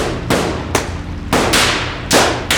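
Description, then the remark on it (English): Rifle shots ring out in a loud, irregular volley as a group of men raise their guns and fire at charging mounted warriors: about six sharp cracks within a few seconds, each trailing off into a brief echoing tail before the next shot. “Then the white dudes all raise their guns and start shooting.”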